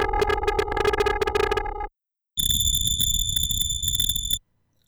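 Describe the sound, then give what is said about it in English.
A buzzy synthesized square-wave tone stops briefly, then banded noise from a noise generator (oscillator) takes over: a steady electronic hiss with several shrill, whistling high bands, holding for about two seconds before cutting off. “The second is banded noise.”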